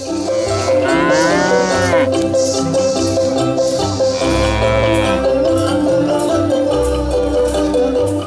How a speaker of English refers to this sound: Uruhururara Mbitse cattle with exceptionally long horns, more commonly known as the Ankole cows.